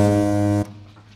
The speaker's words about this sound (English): There you go, suitably beeped out for the inappropriate words that we heard.